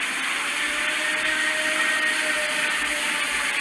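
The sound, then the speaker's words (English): A purported Bigfoot howl: a steady, loud, harsh drone with a hissing, noisy texture and faint sustained tones running through it, unbroken for the whole stretch with no voices. “Just your classic Bigfoot howl.”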